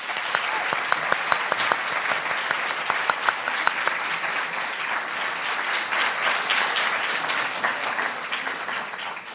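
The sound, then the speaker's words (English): An audience applauds a panel at the end of a conversation, steadily for about nine seconds, a dense wash of many hands clapping with sharper individual claps standing out early on, holding a fairly even loudness throughout. “Please join me in giving our panel one more round of applause.”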